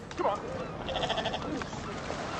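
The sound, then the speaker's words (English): Goats bleat in quick wavering cries over a busy, noisy outdoor background as someone hustles them along, one call rising near the start and a longer quavering bleat in the middle. “Yep, hustling some goats along.”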